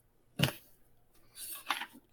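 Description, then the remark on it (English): A sneeze: an abrupt, sharp burst of noise, then a breathier, hissing second burst about a second later. It is fairly quiet and nobody speaks. “Bless you.”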